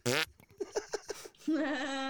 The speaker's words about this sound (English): That was a good fart.